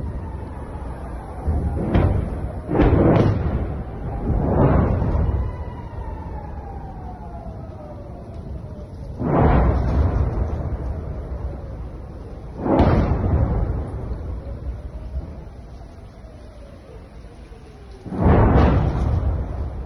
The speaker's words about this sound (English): I want to play you just a clip of what it sounds like, the air sirens in Israel right now, and some of the rockets that are raining down on Israel.